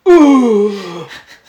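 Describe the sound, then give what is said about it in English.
A voice imitates a weird, drawn-out yawn that could also be a burp: one loud groaning sound that starts high and slides steadily lower for about a second before trailing off into a breathy tail. “And I don't know if it was a yawn or a it's burp. It's a weird yawn.”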